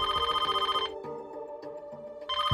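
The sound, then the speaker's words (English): A telephone rings with a rapid, buzzy bell trill for an incoming call from an anonymous man, goes quiet for over a second while a low steady tone lingers, then starts ringing again. No one speaks. “While Denise was sitting on her couch, worrying about her friend, she received a call from an anonymous man.”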